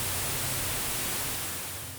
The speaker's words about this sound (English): I was sitting there by myself just gaming out, when suddenly, the static screen cut in, and it was far louder than normal. Now, as this happened, it took me a minute to notice that, within the static, I could hear words. These words said, "Get out."